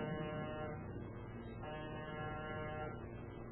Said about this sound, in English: Name's on the door. And push the buzzer.